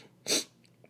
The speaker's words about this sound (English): Like, yeah, excuse the sniffling, man. Like I said, that sneeze hurt, man.